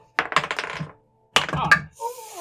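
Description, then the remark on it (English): Dice clatter across a table in two quick bursts of sharp, rattling clicks, each tumbling briefly before settling, rolled for survival checks in a tabletop game, followed by a short murmur of a voice. “Day two, go ahead and go give me a roll, and I'll figure out what you might encounter.”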